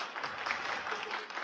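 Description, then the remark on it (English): Steady applause from an audience after dancers bow at the end of their act. Many hands clap in a dense, continuous patter at moderate volume, heard on its own without voices. “The dancers bowed. Everybody applauded.”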